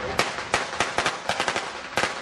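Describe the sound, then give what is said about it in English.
A rapid string of sharp firecracker pops bursts out in quick, uneven succession, about nine loud cracks over a couple of seconds against a hissy background. “Yes, and leftover fireworks, sort of.”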